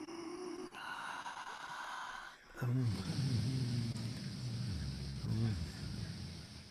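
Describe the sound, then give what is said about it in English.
Forceful alternate nostril yoga breathing, done while lying in Shavasana and closing one nostril at a time with the fingers: long drawn-out inhales and exhales through the nose with a hissing, snorting texture, with a couple of brief voiced sounds mixed in and a quieter stretch at the start. “Close one nostril, breathe through one nostril and release.”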